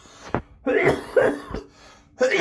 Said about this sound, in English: I know, the weed cough. The weed cough. It sounds like you're dying.